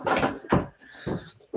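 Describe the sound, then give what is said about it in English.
A door is nudged open by a cat, giving a few soft thumps and rattles with a thin, drawn-out creak running between them. The sounds are moderately loud, with no talking. “Hang on, the cat just opened the door.”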